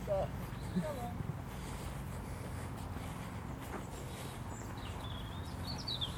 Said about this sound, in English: Yeah, the birds chirping. There's a lot of them about today.